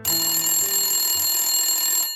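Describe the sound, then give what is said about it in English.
A telephone in a kitchen in Wexford town rings continuously for about two seconds, a bright, steady electronic trill with shimmering high tones, loud, with no voices. “And one day, Mary was in the kitchen making the dinner when the phone rang.”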